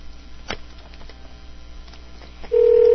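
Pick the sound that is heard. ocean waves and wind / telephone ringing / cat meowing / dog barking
telephone ringing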